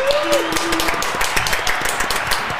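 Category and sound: crowd, round of applause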